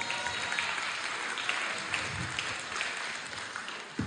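An audience breaks into steady applause, a dense wash of many hands clapping at an even level for a few seconds, with no one speaking over it.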